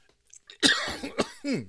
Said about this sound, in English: Excuse me, the attack of the Tic Tac. I had to cough up a hairball too for that.